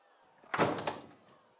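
A door swings shut with a solid thud, a broad burst of sound followed by a second knock as it settles, then a short fading tail into quiet. No one speaks.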